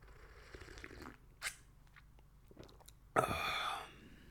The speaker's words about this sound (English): Quick sip of coffee, boss. Don't mind me, boss.